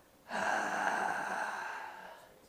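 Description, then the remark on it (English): A person imitates, in their throat, the expiratory wheeze of constricted airways: one long, whistly, slightly musical outbreath lasting about two seconds, steady, then fading at the end. No talking. “When the person breathes out, we hear a wheeze.”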